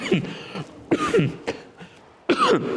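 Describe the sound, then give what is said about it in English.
A preacher coughs three times during a sermon, harsh quick bursts each with a rough throaty rasp, separated by short pauses with faint background noise between them. “Excuse me, it's not our habit to cough.”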